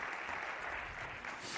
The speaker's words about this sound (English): All right, would you give them a round of applause as well? Thank you, guys.